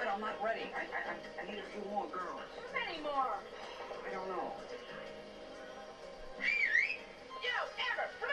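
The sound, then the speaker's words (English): Someone whistles through cupped hands, producing a series of warbling, sliding notes that rise and fall, with murmuring voices and background noise underneath. “I can whistle, yeah, but not with that, with the hand.”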